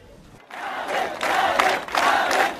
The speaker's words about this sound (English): And it was the same message from the crowds demonstrating at the football stadium. Well, this is the main football stadium in the middle of Mogadishu. It's already packed with people